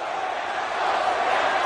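A huge stadium crowd of 68,000 Canadian fans at a Raw wrestling event booing The Rock in one long, unbroken roar, loud and steady for the whole moment, with no single voice standing out from the dense wash of noise.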